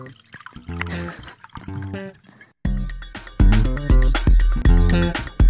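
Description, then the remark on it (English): Sauvignon Blanc wine pours into a glass with a gurgling, trickling sound whose ringing tone shifts as it fills, the splashing growing louder and busier partway through. No one speaks. “How about a sip before we begin? Oh, that's delicious. Drinking Sauvignon Blanc while chatting with the folk.”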